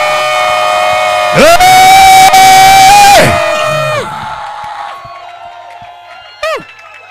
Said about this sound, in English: Shout aloud, amen. In the chat. Amen. A clap your hands and make a joyful noise unto the Most High God.